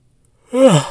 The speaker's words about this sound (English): Oh, wow. That was a big yawn. Normally, I'd cut that stuff out when I edit it, but I don't think I'm going to edit.